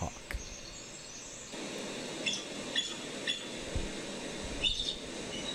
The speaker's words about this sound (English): Oh, that's an eagle. Yeah. Oh. I'm sorry, but an eagle sounds like a songbird. So they use the chattering of the eagle for stuff like that, but like when it's screeching, they use a red-tailed hawk.